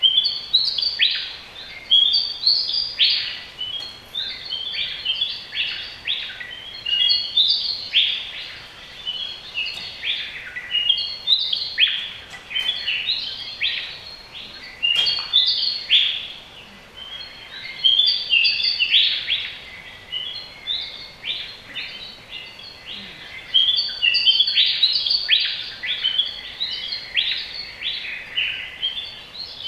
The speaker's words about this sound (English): This is a Willy Wagtail, and here is a dawn chorus of Willy Wagtails. Now just have a listen to this, and I'll talk about it in a second.